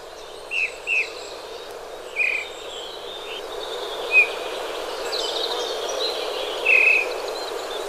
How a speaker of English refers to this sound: The sound of bullfinches out in the wild where they belong.